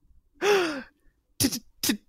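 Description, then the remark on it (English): A performer in character acts out a long, breathy gasp that slides down in pitch, then follows with three short, sharp gasping breaths in quick succession, fairly loud, with no words. “gasping.”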